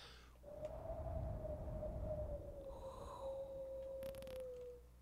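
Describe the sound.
A drawn-out, mouth-made fart noise: a steady mid-pitched tone that sags gradually over about four seconds, riding on a low, rough, breathy rumble, with no talking.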